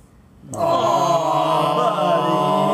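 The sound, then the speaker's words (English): After a brief quiet moment, a child bursts into a loud, sustained wailing cry, holding one long tearful howl that wavers slightly in pitch until the end. “I don't like seeing kids crying.”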